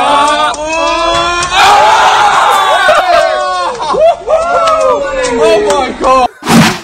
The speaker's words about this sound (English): I think someone said, oh my God, woo. Yeah, that was me. We were just celebrating like we just won the lottery, even though it was an incredibly small win.